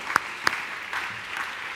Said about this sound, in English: Yeah, y'all can give them a hand and clap. Thank you so much.